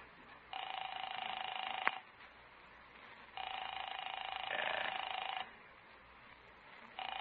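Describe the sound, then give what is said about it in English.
A telephone rings repeatedly on a call to a woman's home: two long buzzing rings with a pause between them and a third just starting at the end, loud, with no voices and nobody picking up. “I'll phone Paula. This is the day her bridge club meets at 2 o'clock.”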